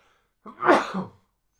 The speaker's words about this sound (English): So I'm going to sneeze. Usually I sneeze later in the... Here we go.